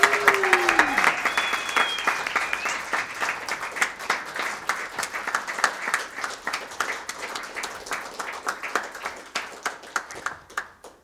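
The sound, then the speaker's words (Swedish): An audience applauds steadily for a musician, a dense wash of many hands clapping that gradually thins out into scattered individual claps by the end. A brief whistle or cheer rises near the start. “Den här applåden är för …, så fortsätt applådera.”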